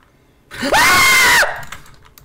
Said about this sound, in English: Oh, dude, the scream was amazing.